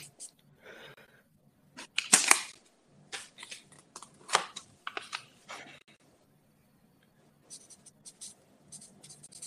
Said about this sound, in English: He zinged that fucking fork at her. Man, I could hear the thud too. I guarantee you that drew blood.